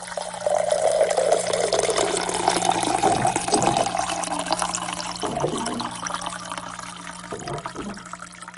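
Water pours steadily into a glass for several seconds, a continuous splashing gurgle whose tone shifts as it fills, with a few brief glugs near the end and no voices.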